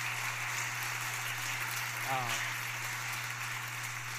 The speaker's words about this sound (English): if you like the way things look, would you just applaud? It's just amazing.